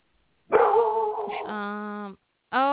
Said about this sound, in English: Who was barking? It's Fenway. It's Fenny-Wenny.